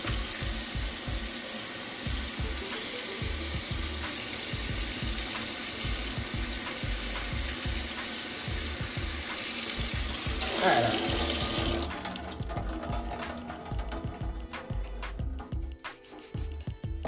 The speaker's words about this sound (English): It's just stuck together, and I don't want to just rip, because if I rip, it will tear up the meat. So, what I do is I try to run some hot water on it and just slowly, like, peel. And bam!